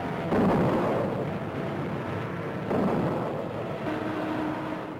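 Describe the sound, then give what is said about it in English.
Dense, continuous anti-aircraft gunfire from the cruisers and destroyers of a naval task force against attacking Japanese torpedo planes and dive bombers, a rumbling barrage with heavy bursts swelling at the start and again midway, steady and loud throughout with no voices. “flying Jap torpedo plane meets a curtain of steel from cruisers and destroyers as it attempts to close in.”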